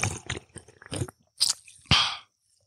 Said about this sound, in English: Did you hear the bubbles?